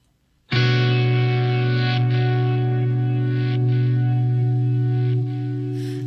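A song's opening kicks in abruptly after a brief silence: a loud, sustained distorted guitar chord rings out with heavy effects and reverb, droning steadily with no vocals yet.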